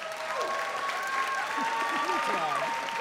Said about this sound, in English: Let's hear our cheers for the pro side.